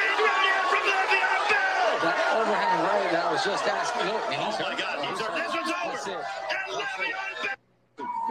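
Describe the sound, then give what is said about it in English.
A loud crowd at the charity boxing match between Le'Veon Bell and Adrian Peterson, in which Bell knocks out Peterson, many voices shouting and chattering in a dense, steady roar, with a sudden brief dropout to near silence just before the end. “They had a charity boxing match, and this happened. If it plays.”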